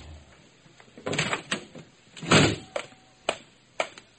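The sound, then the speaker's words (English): The front door of a club is opened: a rattle of the latch, a heavy swinging whoosh with a faint creak, then a few sharp knocks and clicks, with no voices. “I opened the front door of the rendezvous and stepped into a shambles.”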